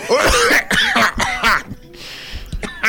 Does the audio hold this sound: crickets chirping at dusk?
no